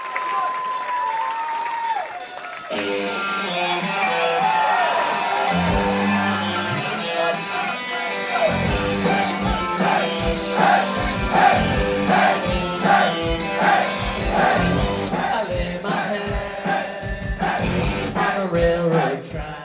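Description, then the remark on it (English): A crowd cheers and shouts through a live band performance. Noisy, dense roaring sits under pounding drums and loud music for about twenty seconds, swelling in rhythmic bursts near the middle. “And here's a good, you could hear how into the crowd is.”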